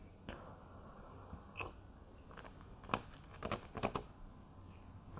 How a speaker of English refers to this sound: Chewing nice.